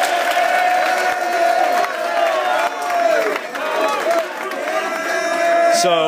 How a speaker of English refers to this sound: Now, you guys are being honored for last semester having 4.0s. That's worth another round of applause. 4.0.